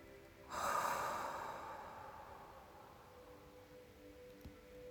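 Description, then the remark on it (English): A single deep, slow breath taken during a guided Christian prayer: an airy inhale swells quickly, then a long, gradual exhale fades over several seconds, with no talking. “Breathing in God's grace.”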